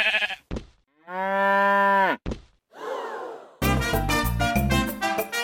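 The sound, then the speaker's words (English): A cow on a farm in Lincolnshire lets out a long, drawn-out moo, loud, after a couple of sharp knocks, followed by a dense, busy wash of other sound toward the end. “Sheep are falling over at such a rate that the cows are confused.”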